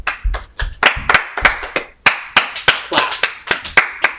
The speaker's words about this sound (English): So this is gonna be a recap episode. Can we just get a round of applause?